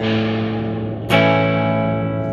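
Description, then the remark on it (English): A heavily processed, distorted guitar tone drones steadily, then a sudden explosive bomb sound from a Bomber effects pedal, played through the guitar, cuts in halfway through, leaving a louder, buzzing sustained tone ringing afterward. “Bomber is this bizarre bomb effect that is just a sound of an explosion that comes through your guitar.”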